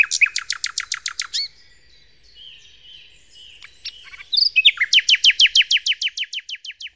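A nightingale sings alone: a rapid run of sharp, high repeated notes, a softer stretch of varied twittering and whistles, then another loud, fast series of repeated chirps.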